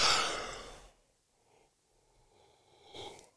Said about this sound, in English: There you go. That yawn. I was waiting for that.